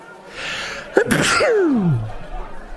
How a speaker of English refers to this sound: Oh, I apologize for sneezing. Sorry.